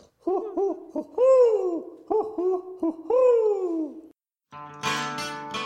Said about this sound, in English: Do you see that shape circling around overhead with a little piece of mail in its mouth? It's not from Hogwarts. It's an owl.